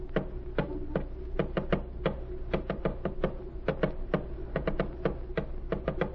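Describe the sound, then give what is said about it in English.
Rapid, crisp taps in irregular bursts and pauses, like a message being tapped out on a key, over a steady low hum with no voices. “Yes, monsieur. Tap it out.”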